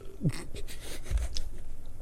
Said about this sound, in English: Sips Red Bull.